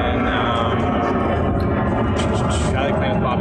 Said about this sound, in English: Do you really like talking when there's airplanes flying right overhead? I do not. Oh, okay, because we just experienced that.